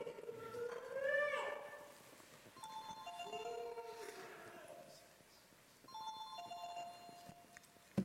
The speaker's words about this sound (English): In most churches, they tell you to turn off your cell phones at the beginning of Mass. And I didn't do that, and it's my phone that you hear.